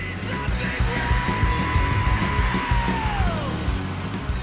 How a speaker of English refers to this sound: It shows up in the cacophony of electric guitars, hard-hitting drums, and what's called a growl in this genre, better known as scream singing.